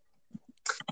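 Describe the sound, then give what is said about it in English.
Several quick computer keyboard clacks in an irregular burst as someone types while doing taxes, the later strokes louder and sharper, with no voices. “No, who the hell is typing?”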